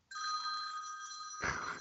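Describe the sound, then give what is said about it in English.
A telephone rings with a steady, bright electronic tone lasting over a second, then cuts off abruptly into a brief clatter, like the handset being picked up. No one speaks. “Thanks for the phone call again.”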